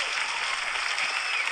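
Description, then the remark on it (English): A dense, steady wash of applause from many hands, continuous and even throughout the short moment, with no voices standing out over the clapping, as an audience welcomes a guest. “That's a lot of applause there.”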